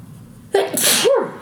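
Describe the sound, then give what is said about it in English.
A single loud sneeze from a person with a cold during an interview bursts out after a brief quiet lead-in, with a sharp breathy explosion followed by a short voiced tail that trails off. “I'm going to sneeze. Excuse me for a second.”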